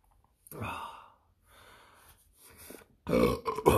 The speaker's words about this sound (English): That's what I needed. Yeah, stop it. I can't. I gotta get those burps out. The air. If you don't get the air out, then you just get uncomfortable. All 12 of them.